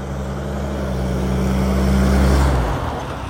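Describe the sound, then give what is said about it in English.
A loud mail truck rumbles past, its low engine drone swelling to a peak before quickly fading away as it moves off. “Mail trucks are loud, y'all.”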